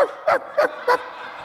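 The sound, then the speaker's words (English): An audience imitates dogs barking: three quick yapping barks in a steady rhythm, with a murmur of crowd noise and a little laughter underneath. “I actually expected a lot more barking by now.”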